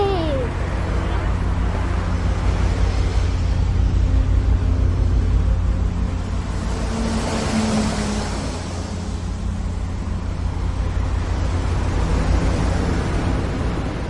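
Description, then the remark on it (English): Waves surge along a port on a dark night in a steady, rushing wash, swelling louder every few seconds over a constant low rumble, fairly loud throughout. “It's a dark night, black as ink. All along the port, the waves are coming up.”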